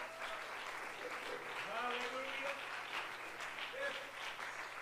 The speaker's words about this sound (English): Can we give the Lord a great hand clap of praise here this morning?